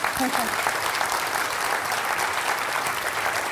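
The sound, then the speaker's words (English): A crowd claps steadily and loudly throughout for a speaker's improvised talk, a dense, even wash of applause with no pauses, and a brief voice faintly audible at the start. “How people could be so stupid to applaud to this miserable improvisation?”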